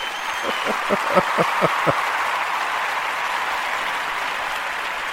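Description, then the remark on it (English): A brief round of applause for Austin Carr: about seven sharp, evenly spaced claps ring out over a steady hiss of crowd-like noise, then the clapping stops and only the hiss remains. “But anyway, we're going to give a round of applause right here.”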